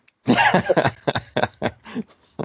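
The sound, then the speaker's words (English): A coughing fit: one long harsh burst followed by several shorter, raspy coughs spaced irregularly, loud, with no talking. “Sorry. Cough. Sorry.”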